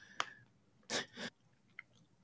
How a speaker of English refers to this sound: Excuse me there. Got a cough.